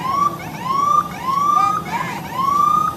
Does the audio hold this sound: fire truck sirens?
yes